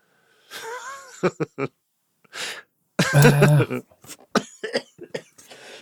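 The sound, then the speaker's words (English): A loud fit of coughing: several short hacking coughs, then a heavy, raspy cough with a strained, wheezy edge, followed by a few smaller coughs trailing off. “End on a cough.”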